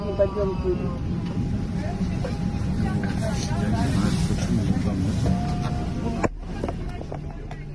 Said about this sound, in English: Soon after leaving his seat, he collapsed onto the floor of the plane. On a video recorded by one of the other passengers, you can hear him moaning in pain.